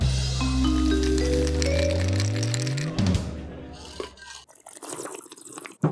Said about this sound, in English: Smug victory sip. That's one of those mouth noises that you're supposed to hate, right?